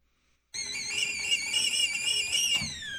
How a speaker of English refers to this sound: It's tea time. Tea time. Kettle noise.